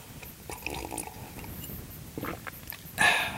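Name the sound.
sipping tea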